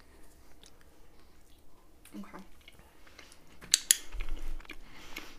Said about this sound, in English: Blue, stop munching. Blue! Little rat loves the cheese.